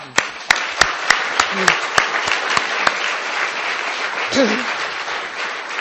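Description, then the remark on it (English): A crowd applauds steadily in a dense wash of clapping, with a few sharp, distinct claps standing out rhythmically at the start and a brief vocal murmur near the end. “And these athletes, I have to applaud you.”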